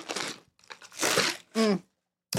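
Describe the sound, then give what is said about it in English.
Crunchy rattling of ice in a cup of iced chai latte as someone takes a drink comes in two bursts, then a short voiced hum of satisfaction follows, and another rattle starts at the very end. “Hold on. Drink break.”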